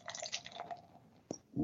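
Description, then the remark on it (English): Mocha Porter, a 5% alcohol ale brewed with coffee, is poured into a mug, with a foamy gurgle and fizz that swells and fades, then a brief knock near the end. No one speaks. “And the pour.”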